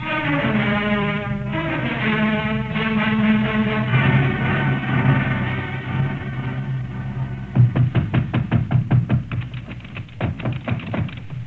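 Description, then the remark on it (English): A rapid series of loud, sharp knocks pounds on a door in an uneven burst, following several seconds of sustained, droning musical tones with no one speaking. “Hammered on the door in vain.”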